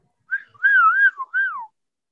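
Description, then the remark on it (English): A person whistles a bird-call imitation: three clear, warbling phrases that rise and dip in pitch, the last sliding downward, with no talking. “I'll whistle at him. It's the perfect bird call.”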